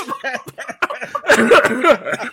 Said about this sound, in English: So, pardon my cough, by the way. I've been sick all week.